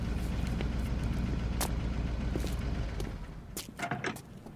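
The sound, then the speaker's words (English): A blue truck's engine rumbles low and steady in the distance, sputtering, then eases down as it pulls up, with a few sharp clicks and knocks near the end. “I just had about it figured out as the blue truck sputtered in the distance.”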